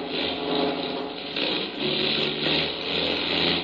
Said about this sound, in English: We're losing altitude fast. Well, the closer we get to the ground with the help of the engines, the less we'll bounce.